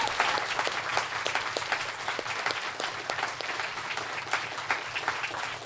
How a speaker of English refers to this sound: Guys, can we have a big round of applause, not just for storytellers today, but for storytellers for the whole year. Big round of applause.